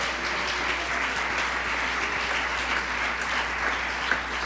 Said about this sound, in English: Clap your hands and praise Him all over the building.